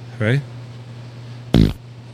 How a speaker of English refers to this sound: More farts. Can't ever get enough.